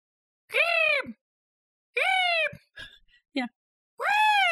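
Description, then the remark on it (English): A person imitates an excited, trilling bird call, like a cat's purr plus a bird call, in three rising-and-falling bursts, with a few short, softer vocal sounds between them. Fairly loud, with no spoken words. “It's almost like a cat's purr plus a bird call.”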